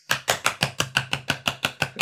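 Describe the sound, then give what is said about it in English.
A quick, steady run of about eleven sharp hand claps, evenly spaced and fairly loud, an action clap along to a birthday song sung for a house's first birthday, with no voices or music audible underneath. “I was doing the action clap.”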